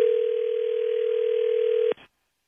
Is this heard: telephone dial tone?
yes